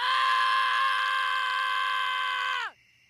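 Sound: child screaming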